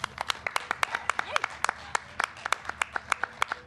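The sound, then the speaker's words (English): A short round of applause from a small group for a panel speaker who works in community development and mental health complex care: sharp, uneven handclaps that stay distinct rather than blending into a roar, steady in volume for a few seconds with no voices over them. “Round of applause for”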